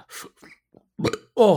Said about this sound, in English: You want, like, if you get the instant burp, then yeah, you didn't even drink it. You just opened the lid and you immediately burped.